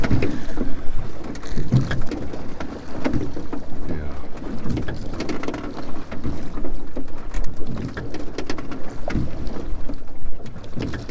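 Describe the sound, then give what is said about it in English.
A rowing gig moves through choppy water past a breakwater toward the open sea, with steady sloshing and splashing, a gusty breeze buffeting the microphone, and a brief spoken word. “Don't row with the arms, row with the body and the legs.”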